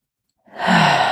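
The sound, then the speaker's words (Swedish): After a moment of silence, a single deep breath, held in after inhaling, is let out in a long, breathy sigh that swells quickly and holds steady until the end. “Håller man så länge som känns bra så släpper man bara ut.”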